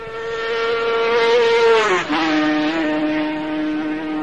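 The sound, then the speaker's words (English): A German-developed Grand Prix racing engine screams loudly, its high, buzzing pitch dropping sharply as it roars past the start-finish line during a race, then droning on steadily as it pulls away, running smoothly. No voices. “And the German developed Grand Prix engine there running really sweetly. Perfect carburation.”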